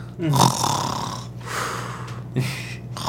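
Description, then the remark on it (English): A person imitates snoring with their voice: three rough, rasping snore cycles in a slow rhythm, fairly loud, with a low steady hum underneath. “He's not like he was attacked, but he's snoring.”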